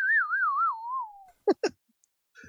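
A slide whistle warbles and glides downward for about a second, loud, followed by two quick descending swoops, with no talking.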